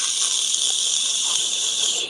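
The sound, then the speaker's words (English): A voice imitates the rushing stream of a woman peeing with one steady, loud, hissing whoosh, a breathy 'shhh' held unbroken for about two seconds with no other talk. “Guys have like a nice little stream. Girls, whoosh, whoosh.”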